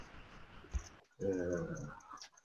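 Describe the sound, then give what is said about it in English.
A person voices a loud, drawn-out creature howl lasting about a second, imitating a yeti, after a brief thump over a faint hissy background. “Yeti noise.”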